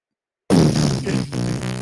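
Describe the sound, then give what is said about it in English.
After a short silence, a loud fart rips out and rasps steadily for over a second, with a brief sputter near the end before trailing on. No one speaks. “Just a fart on command.”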